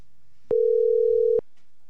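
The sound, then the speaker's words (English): A single steady electronic phone ringing tone, loud, sounding for just under a second as a phone call is placed, with abrupt clicks at its start and end, surrounded by near silence and no voices. “Calling”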